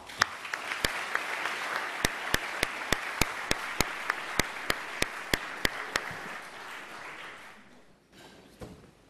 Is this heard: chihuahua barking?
no